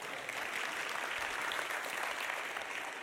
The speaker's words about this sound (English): Now I need to tell you, we can clap for those guys. They're the best. Come on.